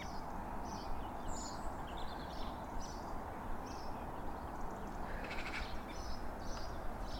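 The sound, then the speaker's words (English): A song thrush sings repeated short, bright phrases from the top of a tree beside a canal, steady across the whole stretch over a constant low rumble of wind or traffic. “Another song thrush.”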